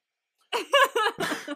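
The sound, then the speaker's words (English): A person clears their throat in a few quick, rough bursts, fairly loud, with a short raspy grunt at the end and no talking. “Oh, I gotta clear my throat.”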